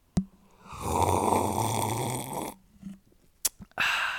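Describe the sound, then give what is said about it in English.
A loud, wet, gurgling slurp of a drink into the microphone that lasts nearly two seconds, followed by a sharp click and another brief rush of airy noise, with no talking. “I should slurp again down the microphone just to annoy you.”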